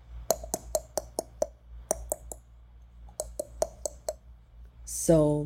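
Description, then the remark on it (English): A raven's mating call: three bursts of sharp, dry, hollow knocks in a quick steady rhythm, ending in a brief, loud, harsh croak. “And then there's a mating sound, which is.”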